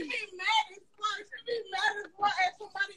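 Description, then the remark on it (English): A woman, a backup dancer, screams from another room in a series of high-pitched, strained vocal bursts, rising and falling in quick succession over a few seconds. “Oh, now I hear her, but yeah, the backup dancer screaming in another room.”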